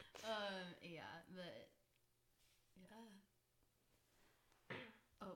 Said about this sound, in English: She just had to clear her throat. Sorry for the pause.